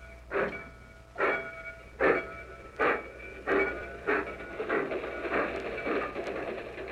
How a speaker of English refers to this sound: Attention, please. Train leaving for Yuma, Phoenix, El Paso, and Houston. All aboard. That's my train.